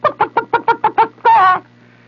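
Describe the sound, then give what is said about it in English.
Seven quick, evenly spaced chicken clucks, then one longer drawn-out squawk, loud, with no talking. It seems to be a person's voice imitating a hen. “And I could hear the chicken go, you know, what the hell you're going to do with a Bambino, Sultan of Swat, 8.5-foot-high Sultan of Swat?”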